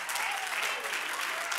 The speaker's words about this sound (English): Come on, clap your hands unto the Lord and magnify him.